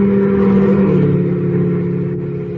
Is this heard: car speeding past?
yes